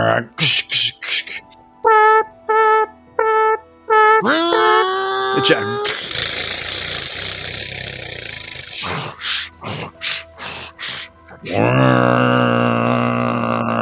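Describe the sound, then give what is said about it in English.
A voice imitates construction noise: rapid rhythmic vocal bursts like hammering, a rising whine, a long hissing, grinding stretch, more choppy bursts, then a sustained buzzing drone. “You're like construction noise, like.”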